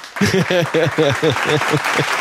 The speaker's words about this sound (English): You want to give me one more round of applause before we sign off?